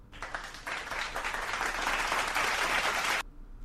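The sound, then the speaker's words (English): A burst of piped-in crowd applause, many hands clapping in a dense, steady wash that swells after a brief start, holds for about three seconds, then cuts off abruptly, like a canned sound effect. “Hey, we have piped in crowd noise too.”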